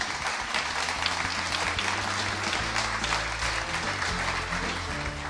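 A crowd applauds steadily for about five seconds, a dense wash of many hands clapping at an even loudness, with a low hum underneath and no voices.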